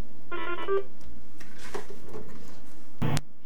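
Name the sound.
telephone ringing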